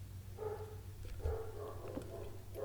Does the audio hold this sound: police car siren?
no